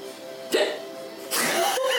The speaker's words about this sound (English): just gonna hiccup.